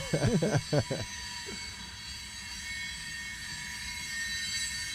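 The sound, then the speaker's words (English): Train wheels grind steadily along the rails with a constant high metallic whine over rumbling noise; a voice briefly sounds at the start before the grinding continues alone. “Oh, I mean, really this is grinding.”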